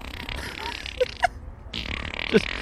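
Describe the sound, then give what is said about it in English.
A few short, buzzy raspberry bursts, a man blowing fart noises with his mouth at a wolf instead of howling, pop out twice over a steady, moderately loud hiss of outdoor background noise on the outskirts of Oakland. “He's showing he's showing the wolf right now, and he's just making fart noises.”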